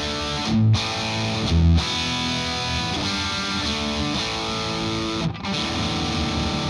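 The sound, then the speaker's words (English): Heavily distorted electric guitar played through a pedal into a Vox AC30 amp plays thick, saturated chords with a few sharp stops and restarts, sustaining a dense, buzzy wall of overdriven tone with no voices. “But on this Vox amp, here's basically what it's going to sound like.”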